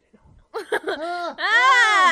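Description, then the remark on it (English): Actor Macaulay Culkin screams in a film: a few short, choppy yelps give way to a long, loud, strained wail that rises and holds at a high pitch, with a faint murmur just before. “And Macaulay Culkin is supposed to be a champion screamer, Home Alone, and this is just him, like, screaming poorly mostly.”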